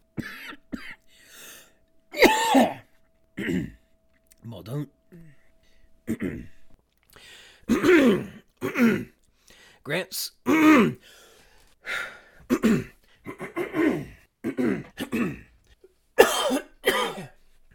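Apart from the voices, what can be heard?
throat clearing and coughing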